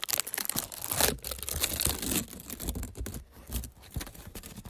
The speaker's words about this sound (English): There's the rest of your ASMR, because that's the only gum wrapper I've left.